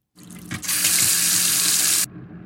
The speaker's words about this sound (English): And this is how water running in my kitchen sink sounds.